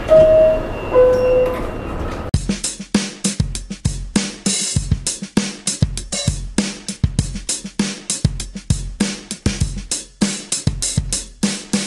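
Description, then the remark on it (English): A two-tone descending chime rings out, then a subway train rumbles along with steady, rhythmic clattering bursts that stay loud throughout, with no voice audible. “Next stop, Daily Thoughts. Stand clear of the closing doors, please.”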